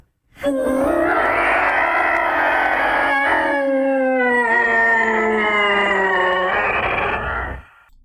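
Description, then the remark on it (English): Long, wavering howling screams rise and fall continuously for several seconds, loud and eerie, echoing over the fens in dense fog and between enormous ruins of towers, with a slight break midway before the cries resume and fade out. No one speaks. “Meanwhile, these screams continue.”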